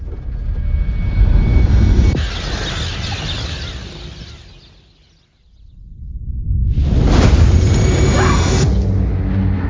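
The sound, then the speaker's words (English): A massive explosion roar of a comet fragment hitting Central Florida in the film Greenland, deep and thunderous, surges loudly, fades almost to silence midway, then erupts again into a sustained, rumbling blast. “We now are getting word that the fragment has hit Central Florida.”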